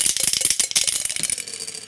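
Dice rattle rapidly inside a glass tumbler, a dense run of bright clicking and clattering taps for about two seconds, with no voices.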